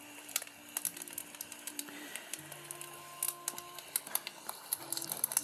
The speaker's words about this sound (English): Just go slow and take the wood out that you want to do so you can make your little wolf. Granddad, can you tell me a story while I whittle?